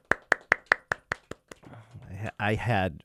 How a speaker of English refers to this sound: Golf clap, please.